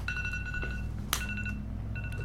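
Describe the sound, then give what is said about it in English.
A phone alarm rings with bright, steady electronic tones that play in bursts separated by short pauses, over a constant low hum, with one sharp click midway. “Wake up. Is it your alarm? I have one of those, too.”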